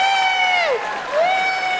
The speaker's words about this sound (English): How many people here, by applause, are 40 or younger? 40 or younger, applaud. That's every time.